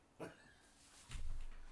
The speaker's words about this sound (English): Must be the neighbor's cat. Sniffing around parts unknown.